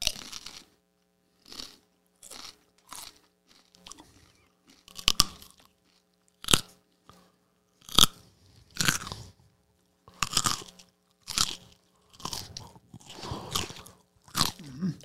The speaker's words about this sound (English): Well, we'll bring in crunchy carrots, and you can crunch right into the mic, and we'll just look at each other.